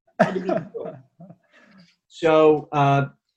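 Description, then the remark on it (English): A small dog whines in two drawn-out, tonal bursts near the end, preceded by a few rough huffs and snuffles and a quiet lull, with no speech. “So my little dog is whining.”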